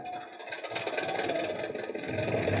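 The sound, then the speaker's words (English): A car engine idles steadily, a continuous low rumble with a slight rhythmic chug, no voices present. “I don't think you'll make it to Falcon Landing in that car, Doctor.”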